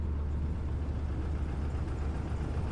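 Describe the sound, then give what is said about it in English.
A steady, low rumble of a bus engine idling as the bus arrives at a stop, constant and loud across the whole stretch with no voices or other distinct sounds. “Oh shit, the bus is here.”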